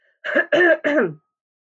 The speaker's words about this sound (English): Excuse me, every once in a while I'm going to have to clear my throat because I'm still getting over this bad cold that I had.